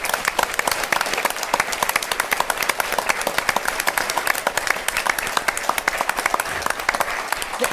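A crowd applauds steadily for several seconds, dense overlapping claps forming a loud, even wash of sound with no talking over it.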